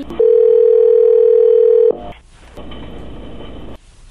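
A loud, steady telephone dial tone of an outgoing call hums for under two seconds, then cuts off into muffled line noise and hiss. No one speaks.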